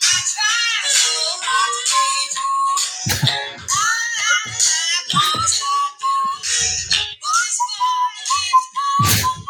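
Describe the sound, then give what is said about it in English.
Loud whistling in a run of short, warbling melodic phrases with rising and falling notes, broken up by several sharp clicks or taps, and no talking. “And a whistle today, too.”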